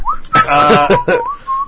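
A person whistles short, clear notes at the start and end, with a louder, rougher vocal burst in between; fairly loud, lasting under two seconds.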